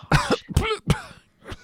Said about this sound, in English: … coughs and sputters.